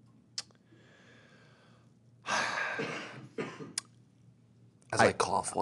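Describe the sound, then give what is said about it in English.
A person coughs in a few harsh, breathy bursts separated by short pauses, with quieter breathing and faint clicks in between. “As I cough, you're supposed to cover up my cough with your talking.”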